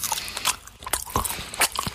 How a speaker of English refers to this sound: It's just very hard to concentrate. You're chewing very loudly. I'm the king. I will chew how I want to chew.